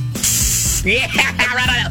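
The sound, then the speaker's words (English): A short, forceful spray of Lysol aerosol disinfectant hisses steadily for about half a second during a live demonstration, followed by a person talking. “This is the spraying of an actual Lysol.”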